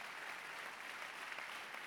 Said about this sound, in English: You're clapping and singing the house right now. Be seated.